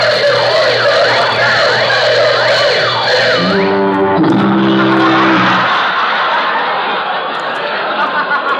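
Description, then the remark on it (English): A loud burglar alarm blares: warbling siren tones over a low, steady buzzing horn, then a second deeper buzzer joins before the racket gives way to a noisy clatter. “Now I'll be able to buy a louder burglar alarm.”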